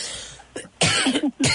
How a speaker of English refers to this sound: I've got the coughs now.